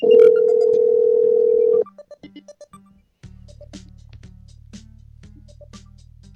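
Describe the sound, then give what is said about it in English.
A steady phone dial tone gives way to a quick run of keypad beeps, a short silence, then a low, continuous line tone as an outgoing call rings through. No one speaks. “All right, about to do this podcast over the phone.”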